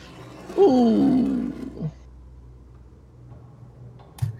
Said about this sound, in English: It's the outside wolves, not the inside wolves. Does it sound like they're going to break it, or...? They are definitely damaging the windows.